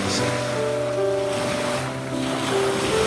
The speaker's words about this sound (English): Oh, irritating sound of the sea, never ending.